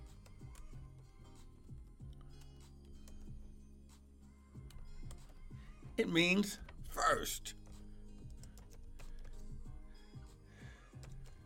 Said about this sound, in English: Bear with me because I'm typing in two different places, amen.